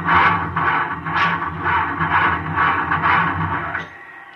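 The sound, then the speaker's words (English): A loud, harsh grinding and whining as an engine with sand in its bearings and injectors cranks without catching, in wind of about 145 miles an hour, surging in rapid rhythmic pulses for about four seconds before cutting off abruptly. “I can't start the engine.”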